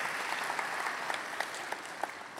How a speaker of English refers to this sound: While he's still happy, let's give him a round of applause and thank you